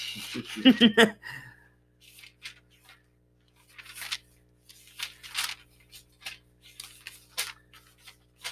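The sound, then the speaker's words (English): Thin pages of a Bible are flipped and rustled while looking for a verse, in a series of soft, crisp bursts with short pauses between them, following a brief vocal sound at the start. “All they're going to be hearing is a bunch of paper.”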